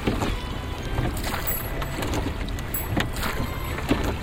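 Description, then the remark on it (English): The oars of a rowboat dip and splash in a steady rowing rhythm as it is rowed out past a boat basin in the morning, with water sloshing against a constant breezy background. No one speaks. “I don't have to go very far, just past the boat basin. I can ship the oars and just stare out to sea.”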